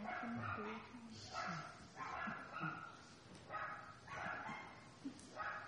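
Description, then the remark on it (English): Several dogs bark repeatedly in overlapping bursts, with some yips and whimpers mixed in, steady throughout, as if a group of dogs is barking together. “Yeah, it's a lot of dogs barking, so I wasn't sure what he's talking about.”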